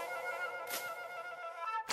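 A banana cream pie whizzes through the air with a steady whistling tone, then smacks into a face with a sudden loud splat at the very end.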